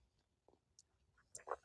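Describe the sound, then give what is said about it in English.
A quick, quiet sip of coffee from a mug: a few soft lip and mouth clicks, then a brief slurp, with no one talking. “this is coffee talk, so I'm taking a sip of my coffee, so hang on”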